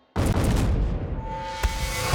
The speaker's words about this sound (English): That's when they heard the muffled explosion.